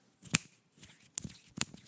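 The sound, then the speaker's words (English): Three sharp clicks of a man's long, talon-like toenails tapping together, spaced irregularly over a soft rustling background, with no one talking. “I don't know if you guys can hear that, but his nails are clicking together.”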